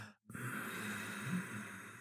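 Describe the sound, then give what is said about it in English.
After a brief pause, a soft, unstrained breath is pushed from the throat and flows out through the nose with the mouth closed, a gentle, whispery hiss lasting nearly two seconds, quiet. “So it's coming through the nose, and it's a softer breath. We're not straining on it. We're just breathing out, making that whispering sound from the throat.”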